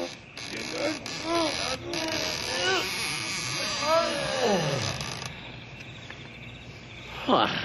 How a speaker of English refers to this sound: This is the only big building in the whole town. You'll see. There. Now, help me open up these big doors.